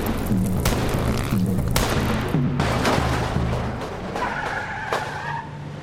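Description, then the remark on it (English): A suspect's car skids loudly after its back tire is shot out, a harsh, wavering tire squeal over a roaring engine, broken by several sharp bangs and thuds, followed by a high, sustained screech near the end. “Shoot out his back tire.”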